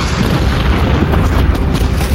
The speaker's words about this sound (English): He knew as the barrages tended to creep forward, the chances of a second shell landing in exactly the same place were minimal. You just had to survive the first few explosions.